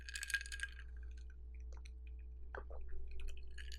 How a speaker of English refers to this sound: If you hear that little sound, that's ice clinking. I've fixed myself a cocktail.